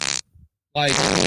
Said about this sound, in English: Is that guy still farting? Yeah, man, check it out. Dude, that's like the longest. Where did you get this? Like what? No, it's an old clip, man. This is a classic.